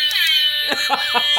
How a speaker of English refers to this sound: The Jamaican air horn. I got that from my wife. God, I love it. I love it so much.